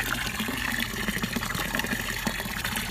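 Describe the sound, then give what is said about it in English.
Hot water pours steadily into a container, a continuous splashing gush with a bubbling, filling texture that holds at an even level for a few seconds, no voices. “And we have more hot water. We have more hot water.”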